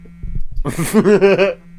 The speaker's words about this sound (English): Is your phone ringing? Oh, I thought you hit something and it started to begin. It's your phone.